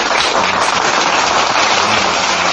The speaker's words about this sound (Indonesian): Tepuk tangan gitu.